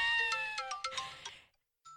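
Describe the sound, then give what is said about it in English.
An iPhone alarm ringtone plays bright, chiming electronic notes in a quick rhythmic pattern for about a second and a half, falls silent briefly, then a new tone starts. “Let's just play a bunch of alarms. Every ringtone that iPhone has to offer.”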